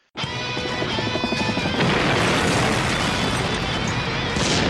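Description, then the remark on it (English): A loud explosion sound effect bursts in abruptly and keeps roaring as a dense, sustained rumble of crackling noise for several seconds, with a brief tonal ring layered in at the start. “Explosions, explosions, explosions!”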